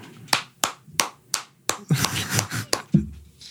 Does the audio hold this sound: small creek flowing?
no